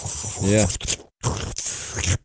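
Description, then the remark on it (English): A voice imitates wet slurping with its mouth: two noisy, sucking bursts, the first with a brief voiced gurgle, separated by a short pause, fairly loud and with no other talk. “You're really into the slurping sounds.”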